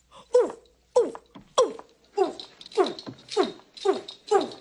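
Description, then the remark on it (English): A voice imitates an orangutan with about eight loud hooting calls in a steady rhythm, each a short falling yelp with brief pauses between. “Make a noise like an orangutan.”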